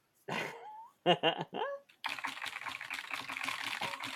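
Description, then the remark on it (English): A few short warbling, tonal sounds give way to rapid, steady clattering of typing on a computer keyboard, dense and continuous for the last two seconds at a moderate level, as someone looks up the Australian dollar to Canadian dollar exchange rate. “That sound. I thought that was you on your computer.”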